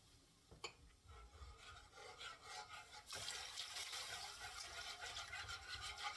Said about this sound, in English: So to this, we're going to add water. And it's going to make a sound and some splashing noises, but that's okay. I'm adding probably about 4 cups of water.